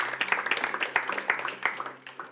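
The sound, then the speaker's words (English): A group of people claps steadily in response to news that Trailside will be at the table for the city's new master plan, producing a dense stream of sharp, overlapping slaps at moderate loudness that slowly thins out toward the end. “Because the city, and we can clap for that, that's fine, that's encouraging.”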